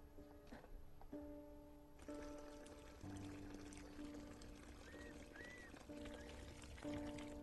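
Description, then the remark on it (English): Water pours and splashes steadily for several seconds as a blind woman fetches water in the Himalaya, a continuous trickling rush, with soft sustained musical tones underneath. “But simple tasks such as fetching water now take longer and can be treacherous.”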